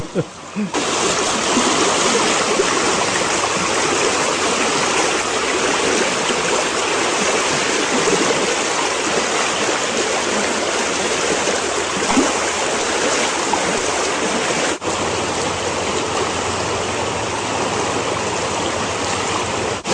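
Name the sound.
flowing creek water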